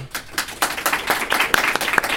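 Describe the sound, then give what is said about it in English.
An audience on a show about superheroes applauds a guest spontaneously, not cued by an applause sign. It is a steady wash of many overlapping hand claps with sharper individual claps popping out, moderately loud throughout with no talking. “John did not hold up the applause sign. That was organic, actual love for Christopher Jones.”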